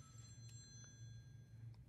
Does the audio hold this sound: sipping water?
no